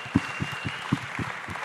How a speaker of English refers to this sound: And of course, we really, really, really, really, really, really, really should thank our lovely, lovely audience. So everybody give yourself a round of applause. Woo!